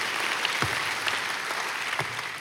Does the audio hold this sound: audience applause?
yes